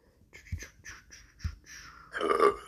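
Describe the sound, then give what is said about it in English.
A loud burp that builds over a couple of seconds and ends in a rough, drawn-out belch, preceded by softer breathy throat noises, with no talking. “Very burp.”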